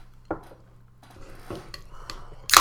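glasses clinking

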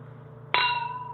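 wine glasses clinking

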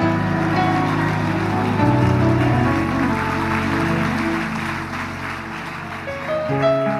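audience hand clapping

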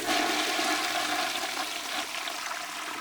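toilet flushing

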